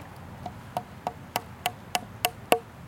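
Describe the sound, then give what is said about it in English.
A hammer drives a nail into wood right by a knot with about eight steady, evenly spaced taps that grow louder, ending on a harder blow with a brief metallic ring. No one speaks. “Oh my God, I can't aim this hammer for life of me. It's hard. It's right by a knot.”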